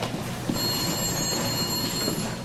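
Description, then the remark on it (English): A telephone rings in a federal court judge's chambers in July 1965, a steady, bright electronic tone lasting about two seconds, set against a constant low rumbling background noise; no voices are heard. “Marshall, now a federal court judge, is in his chambers and receives a surprising phone call”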